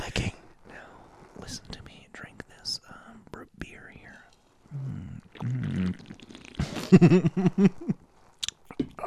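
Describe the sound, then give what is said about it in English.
Wet, crunchy chewing with irregular bites and mouth noises picked up by the microphone, mixed with soft whispering in an ASMR style. “That's ASMR, all ASMR type stuff there. I'm chewing.”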